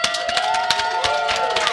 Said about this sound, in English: Anyway, we want to say a very special thanks, and we're going to give a round of applause to Garzelli's Grinder and Pizza Company.